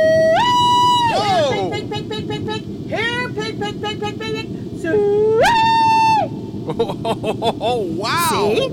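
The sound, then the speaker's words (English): A person loudly hollers a pig call: long, piercing, high-pitched whoops that swoop up and hold, repeated three times with warbling, yodel-like bursts in between. “I call a pig.”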